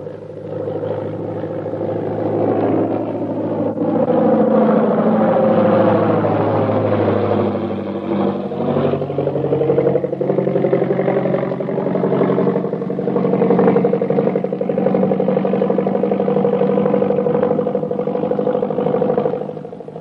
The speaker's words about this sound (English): Here comes the plane. We'd better stand where we can get a full view of everybody getting off.